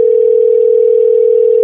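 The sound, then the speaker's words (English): A steady, loud electronic telephone ringing tone hums without a break, a single low pitched drone with a faint warble, heard alone over the line with no voices. “Then we just hear the ringing of the phone.”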